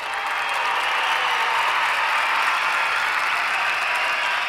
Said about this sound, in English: That's a good point, I do. I've got a applause track.